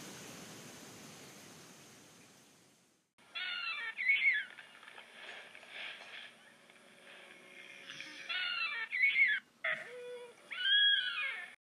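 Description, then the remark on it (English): After a hiss of rushing noise, an Ornitholestes dinosaur roars at a juvenile Diplodocus in loud, screechy bursts with a wavering, fairly high pitch: one call early on, then two more in quick succession near the end. “What's the Ornitholestes roaring at?”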